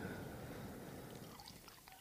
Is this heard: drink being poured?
yes